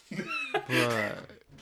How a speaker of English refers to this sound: Pedro has a magical door that likes to open sometimes. It's my fault, y'all.